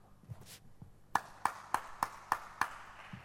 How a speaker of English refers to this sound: Just because, like in the second service, as I was about to preach, I just put the microphone down like this and began to clap my hands.